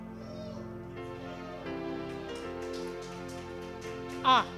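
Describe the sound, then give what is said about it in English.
An audience claps steadily in a dense, continuous patter that runs the whole time, over sustained musical tones, with a brief high-pitched cry rising near the end, in answer to being asked how many people are getting married this year. “We're only hearing clapping, you know.”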